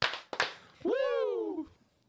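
Two quick, sharp claps about a quarter second apart, followed by a long, loud 'woo' shout that rises and then slowly falls in pitch.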